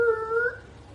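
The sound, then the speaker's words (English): A voice imitates a car screeching to a stop with a single high, strained, whining squeal lasting about half a second, rising slightly in pitch before cutting off into quiet. It is moderately loud. “You know, a boy chased a ball into the street, and you know the car is like,”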